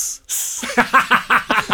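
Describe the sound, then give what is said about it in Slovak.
A voice imitates a snake with two sharp, high hisses, the second longer, followed by a run of about five rhythmic, voiced bursts of laughter. “No nie, však ja som hada hral, že som v tej zóne.”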